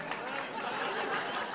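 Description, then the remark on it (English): A live audience claps and cheers in an applause break after a quiz example, a dense, steady wash of many hands with some crowd noise mixed in, lasting the whole brief moment. “I know, when the example gets an applause break.”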